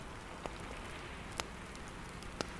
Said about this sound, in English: And now here comes the rain, the little pitter patter against the window pane.